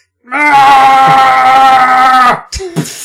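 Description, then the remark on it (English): In a video game, the character Nikolai lets out a loud, sustained scream for about two seconds from upstairs in an elevator shaft, then it cuts off into a couple of abrupt, short bursts as he explodes, with no talking. “That was him exploding.”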